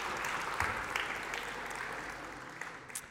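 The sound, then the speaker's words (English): A crowd claps steadily in a dense, continuous wash of applause, with a few sharper individual claps standing out. “Let's give Josh a big round of applause.”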